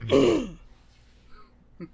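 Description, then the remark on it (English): A single loud, rough throat clearing, lasting about half a second, followed by quiet and a faint short vocal sound near the end. “It actually does more damage for you to clear your throat.”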